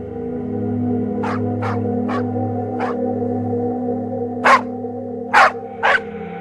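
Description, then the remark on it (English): Dogs bark aggressively after dark at around 8 o'clock on a small Kentucky homestead, as if an intruder were on the property: a run of about seven sharp barks over a steady low droning hum, the first few moderate and the last three louder. “At around 8 o'clock, Lucky's dogs began to bark violently as if an intruder was on the property.”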